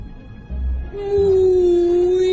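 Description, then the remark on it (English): A person lets out a long, drawn-out moaning tone in imitation of a whale call, holding the pitch steady with a slight dip, after a brief low rumble at the start. “Maybe he only speaks whale.”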